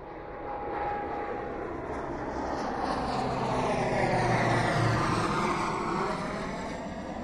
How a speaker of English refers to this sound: The airplane landed, and then the crooked Detroit cops and some drug dealers that were working for them helped offload the bags of drugs and put them into an undercover FBI car.